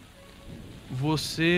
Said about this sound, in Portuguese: É um dia frio e chuvoso nesta tarde em Arkham. O céu está ameaçadoramente escuro.